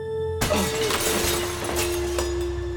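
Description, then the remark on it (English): A sudden, loud crash of breaking glass as Ignato falls onto his glass coffee table, followed by a couple of seconds of scattering, tinkling shards over a steady low droning hum. “Ironically, Ignato had fallen on his glass coffee table, much like the coffee table he had tied Brenda Schaefer to, and cut himself severely.”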